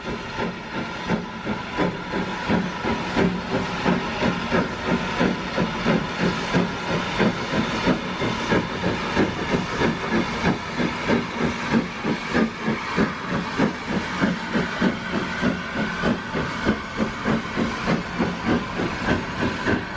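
The Lancashire and Yorkshire Railway 0-6-0 steam locomotive No. 52044, built in 1887, chuffs steadily in the UK, pulling vintage coaches over 100 years old: a continuous loud hiss of steam overlaid with rapid rhythmic exhaust beats and mechanical clanking, with no voices.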